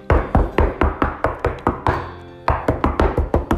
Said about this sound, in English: We heard these little footsteps going across, back and forth, and we were like, "What? Who is that? What is she doing?"